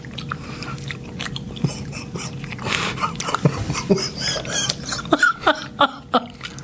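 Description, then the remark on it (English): Wet, sticky chewing of a strawberry-banana-smoothie-flavored popcorn jelly bean, with irregular squelching clicks that grow louder and more rhythmic toward the end, no talking over it. “I'm trying not to chew it anymore. I'm just going to try to swallow the whole bean.”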